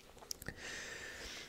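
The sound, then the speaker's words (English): A quick gulp of a drink: a couple of wet mouth clicks and a swallow, then a steady soft hiss like fizz or a breath out. Nobody speaks. “And just have the little... little gulp just for the audio audience, just so you know I'm not capping.”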